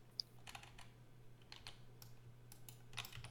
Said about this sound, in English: Sorry, I was clicking some monsters and that's fine.